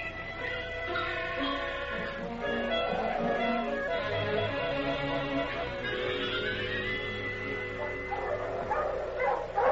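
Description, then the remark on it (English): A pack of sled dogs barks and yips continuously, overlapping excited calls and a few whimpers filling the whole stretch, loud with no pause. “I ain't pulling this thing. Talk to the dogs.”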